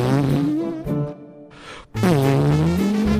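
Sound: imitated fart noise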